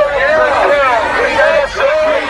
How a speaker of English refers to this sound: You know, the protests outside the Supreme Court last night were just, I mean, nuts. Just not. I couldn't even tell what they're screaming half the time.